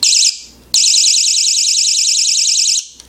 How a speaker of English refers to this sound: All right, let's test the buzzer. That's kind of the real feature of this thing. You have this large speaker. So here we go, 3, 2, 1, buzzer.